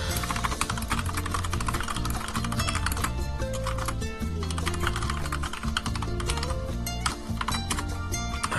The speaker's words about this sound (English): Yeah, there you go. You get your daily... you get your weekly dose of the lovely keyboard sounds, which was totally worth paying the higher price I paid just so you can listen to me type on a keyboard.